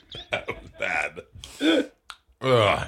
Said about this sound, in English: Ugh. Oh, that burp was disgusting.